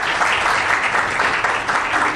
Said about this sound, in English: Can we give a round of applause to our panelists here, as well as to our candidates?